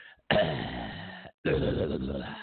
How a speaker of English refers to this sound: Let me get my Hillary cough going there.